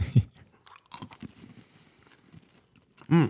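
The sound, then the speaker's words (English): Crunchy chewing of a passion fruit treat: a loud bite at the start, then a run of soft crackly munching, and a short voiced hum at the end. “It's really crunchy.”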